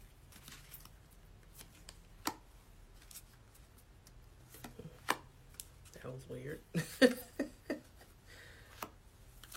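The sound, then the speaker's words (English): A deck of cards being shuffled, a soft papery riffling with scattered sharp flicks and taps, growing busier toward the end; a faint low hum sits underneath. “So I'm just shuffling them because I haven't used them in a while.”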